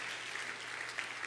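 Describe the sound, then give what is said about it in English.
Steady audience applause, a dense wash of many hands clapping at an even, moderate loudness throughout, with no voices standing out. “And so, that's worth clapping about.”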